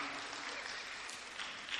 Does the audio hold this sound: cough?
no